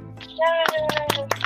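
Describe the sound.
A short burst of applause: a handful of sharp, irregular hand claps over a sustained, tonal voice-like sound, fairly loud and ending abruptly after about a second and a half.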